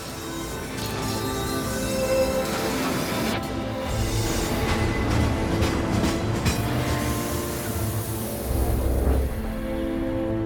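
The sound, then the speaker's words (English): A train in a video game rumbles loudly and steadily, with sustained metallic tones ringing over the noise as it comes to a screeching halt, the clatter continuing throughout without any voices. “But then you realize we actually have a video game to play, and that starts with the sounds of a train coming to a screeching halt.”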